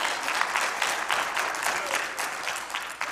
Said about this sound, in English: You can clap about that. That's fine.